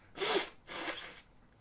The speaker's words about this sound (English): Let me blow my nose if you don't mind.